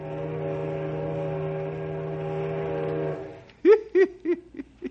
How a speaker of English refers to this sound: Our story today concerns the small riverboats that take tourists from Knotty Pine up to Mirror Lake and the King's Islands. Say, I hear the whistle of a riverboat right now.